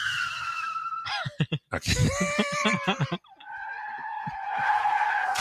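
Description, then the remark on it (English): A car crash sound effect: a loud, sustained tire screech skids, then breaks into a clatter of crashing impacts, with laughing voices mixed in, before another long squeal of tires rises and holds to the end. “I wasn't planning on using that sound effect, but I saw it on there.”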